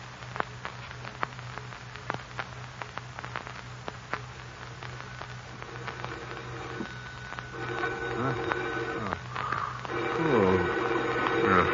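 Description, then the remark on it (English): A telephone is dialed with a run of sharp, irregular clicks over a low steady hum, then a ringing tone builds and repeats, growing louder toward the end, as a man calls Commissioner Weston's home number. “Could be calling at this hour. Now, where's that phone?”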